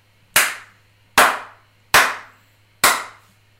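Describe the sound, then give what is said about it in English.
Four sharp, loud hand slaps land in an even, steady rhythm about a second apart, each a crisp smack that dies away quickly over a faint low hum, with no talking. “Four slaps and a snap.”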